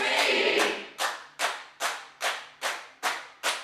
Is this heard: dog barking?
no